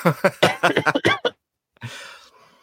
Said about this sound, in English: Oh, dear. You made me cough laughing.